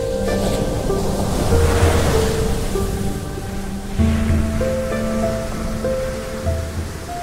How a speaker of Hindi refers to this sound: चट्टान के आसपास का सागर बहुत तूफानी था। वहां ऊंची ऊंची लहरें उठती रहती थी।